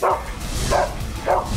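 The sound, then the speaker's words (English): A dog barks three times in a steady rhythm in a movie trailer, each bark a sharp woof about half a second apart, over a continuous noisy background. “I can't believe I'm a dog.”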